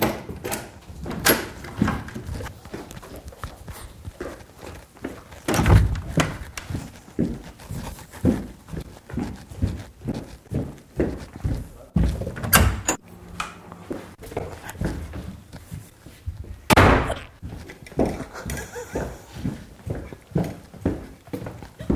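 Doors slam again and again, loud, with a few especially heavy bangs among a busy run of wooden knocks and clatters. Nobody speaks.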